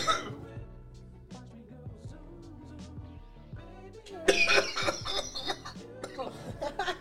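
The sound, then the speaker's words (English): Strained coughing with breathy, choked sounds after inhaling a dab hit, building into a loud burst of harsh coughs partway through and then trailing off into rough, raspy hacking. “Sounded like a cry cough.”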